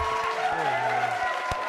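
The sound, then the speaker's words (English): An audience applauds steadily, a dense patter of clapping with a few sharper claps standing out, mixed with voices and cheering from the crowd. “Hey, clap it up for him. Clap it up for him.”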